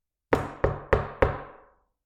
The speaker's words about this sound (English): When I knock on the table, the listener, you who are listening to me, can figure out by yourself that I knocked on the door. Right? I did not have to tell you.